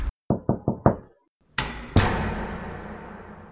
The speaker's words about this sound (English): Knock, knock.